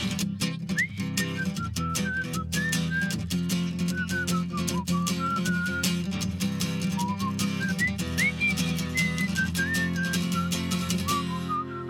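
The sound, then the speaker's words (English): A performer whistles a solo during a live song, a bright, wandering melody of sliding, sustained notes, clearly audible over a full, steady instrumental backing with regular percussion hits throughout. “but since I'm only one here, I'm gonna do a whistle solo.”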